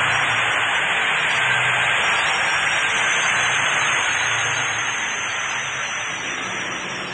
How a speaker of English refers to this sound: Erwin Center is an arena with a big truck ramp. In fact, there's a truck in the hole right now, as they say. Probably hear that in the background. Pulling out, getting ready for the next truck.